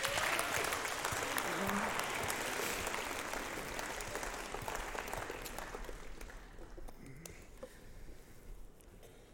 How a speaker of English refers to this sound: Yeah, so thank you guys for coming up here and telling us your story. If you guys give them a round of applause.